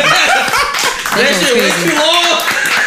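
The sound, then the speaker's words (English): A canned applause effect played from a soundboard: a steady, loud wash of many hands clapping, mixed with whoops and cheering voices from the crowd throughout. “Let me turn the applause back on.”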